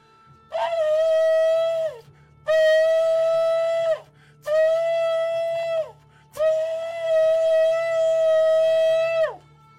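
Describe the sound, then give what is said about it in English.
A shofar sounds four loud, brassy blasts, each holding a steady, buzzy tone before sliding down in pitch at the end; the fourth blast is the longest. No one speaks. “But then when he's getting ready to speak a word through his prophets, he says, blow the shofar, blow the trumpet in Zion and sound the alarm.”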